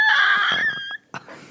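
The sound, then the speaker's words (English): A person shrieks a high, piercing cry in imitation of an eagle, a loud sustained screech that wavers and breaks off, followed by a brief pause and a short squawk. “It's an eagle.”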